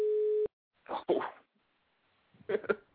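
A single steady electronic beep, a flat mid-pitched tone with a buzzy edge lasting about half a second, then two short noisy bursts like sneezes or coughs after a pause.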